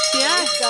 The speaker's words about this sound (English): So we hit our goal. So guess what? Yes, ring that bell.